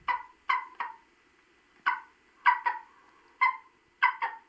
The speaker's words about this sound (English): Examples? Well, here's the majestic golden eagle.